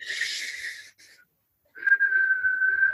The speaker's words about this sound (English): Have you ever tried inhaling on the whistle? Yeah, and then I can do like one, but like a song, I would love to be able to do a song whistling.